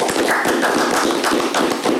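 A small group applauds steadily for two seconds, a dense patter of overlapping hand claps at an even, fairly loud level with no voices standing out.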